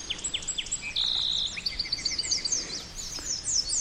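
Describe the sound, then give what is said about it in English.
Several birds sing at once at Martin's Landing, part of the Fort Boise Wildlife Management Area in western Idaho, a busy chorus of high, quick chirps and sweeping whistles, with one sustained bright trill standing out near the start over a soft background hiss. “her new audio postcard from a very birdy place in western Idaho”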